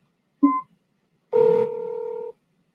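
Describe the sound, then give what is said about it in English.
Electronic dialing tones of an outgoing phone call: a short beep, a brief pause, then a longer steady two-pitch tone lasting about a second. Clear, with no voices. “Of course, you can make a phone call. Call Yanir.”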